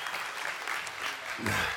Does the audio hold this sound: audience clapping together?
yes